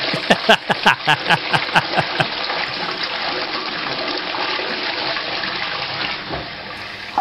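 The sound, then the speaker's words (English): A toilet flushes: a quick series of rattling clicks from the handle, then a loud rush of swirling water that gradually thins out over several seconds. No one speaks. “I'm going to bring up a toilet noise.”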